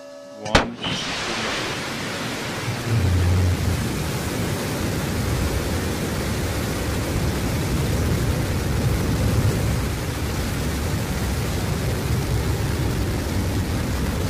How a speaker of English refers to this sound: Mission control has confirmed New Shepard has cleared the tower and is on its way to space. We can hear it here from the desk.